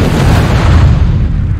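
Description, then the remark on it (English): A loud, deep boom of a grill explosion with a rumbling low-end roar that stays heavy and sustained, trailing off slightly at the end with no voices. “Until that grill explosion.”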